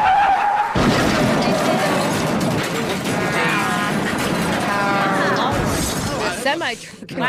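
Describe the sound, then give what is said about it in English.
Car tires skid with loud, warbling squeals over a dense, roaring crash of smashing and shattering debris that fills the whole clip, intense, before tapering off at the end. “And I lost control and swerved across four lanes of traffic and we crashed into a police station.”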